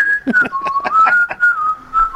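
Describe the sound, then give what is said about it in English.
A man whistles the children's song melody "Farmer in the Dell", a clear, steady tone stepping gently up and down in pitch, fairly loud, with faint background clatter underneath. “He whistled Farmer in the Dell for you.”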